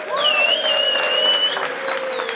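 An audience at Robert Morris University claps steadily and loudly for an award winner chosen by vote for high character, a dense wash of many hands with some sustained cheering tones mixed in, never pausing across the few seconds.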